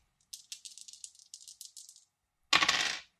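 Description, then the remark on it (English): A handful of dice clatter and tumble across a table in a quick string of small clicks, then a louder, denser burst of rattling near the end, rolled for a critical hit. No one speaks. “That is a critical. I need a bunch of dice for this.”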